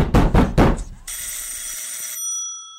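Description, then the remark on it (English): Agents knock three loud, evenly spaced times on a door on a summer night in a city in the Soviet Union during the Great Terror, followed by a bright ringing tone that sustains for about a second before fading into silence. “Sure enough, agents at the door.”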